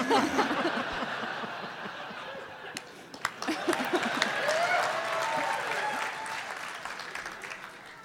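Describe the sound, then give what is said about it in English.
An audience in Portland bursts into steady applause mixed with laughter and cheering at a mention of asparagus, the clapping sustained and fairly loud throughout, with a few whoops rising over the crowd. “I am totally hung up on the fact that in Portland, asparagus is an applause line.”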